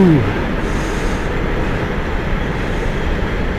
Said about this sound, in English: Sorry, there's a freight train going past. Ah, yes. There goes all the nuclear waste from Germany.